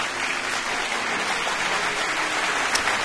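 Steady applause from a crowd for the first person to guess correctly, a dense continuous patter of many hands clapping at an even, fairly loud level for the full few seconds, with no voices standing out.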